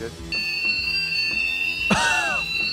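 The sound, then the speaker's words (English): A ghost detector device plays its alarm, a steady, high-pitched electronic tone that holds for a couple of seconds, with low background murmur and a brief louder vocal sound breaking in near the end. “The alarm is actually two melodies.”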